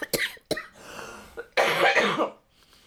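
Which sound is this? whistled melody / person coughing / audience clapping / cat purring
person coughing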